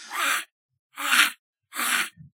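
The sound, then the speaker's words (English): A voice imitates Donald Duck's sneeze: three breathy, raspy bursts of even length with short gaps, ending in a tiny low grunt. There is no talking. “Would you mind gracing us with your Donald Duck sneeze?”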